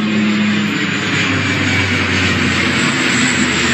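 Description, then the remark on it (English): An Alaska Airlines Q400 turboprop airliner roars loud and low overhead, a steady, dense engine drone with a humming propeller tone running through the whole stretch and no voices. “It's a fucking Alaska Airlines Q400.”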